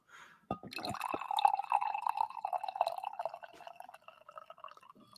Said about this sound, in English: All right, Miles, you want a coffee pour? I'll give you a coffee pour.